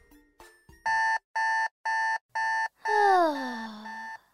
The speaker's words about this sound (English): rolled over and snoozed her alarm.